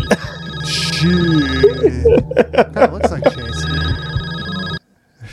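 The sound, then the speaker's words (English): A telephone rings with a steady electronic tone and a quick run of sharp pulsing chirps, fairly loud, over a low droning background, then cuts off abruptly near the end. “Look at that phone.”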